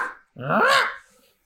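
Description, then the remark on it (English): One short, throaty dog vocalization, part bark and part growl, rising then falling in pitch for about half a second, from a dog blocking the entrance to a pet food store. It is fairly loud against a silent background. “Oh, that line's growling, but that dog refuses to move.”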